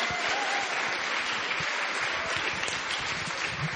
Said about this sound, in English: Welcome and thanks so much for coming out to the Powerhouse Arena. How about a round of applause for our event tonight, the launch of You're the Best by the Satellite Sisters.